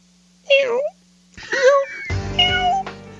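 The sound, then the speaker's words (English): A cat meows loudly, a short cry followed by a longer, wavering meow that runs into a drawn-out yowl with a dense, busy sound layered underneath. “It's a cat, Fred.”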